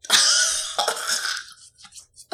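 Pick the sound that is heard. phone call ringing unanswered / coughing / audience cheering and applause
coughing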